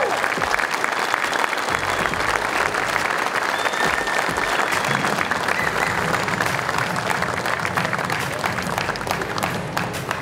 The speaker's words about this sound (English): So, if you would, let's start hearing a big, big round of applause for